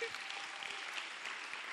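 An audience claps steadily for South Africa, a dense, even patter of many hands sustained at a moderate level throughout, with no voices rising above it.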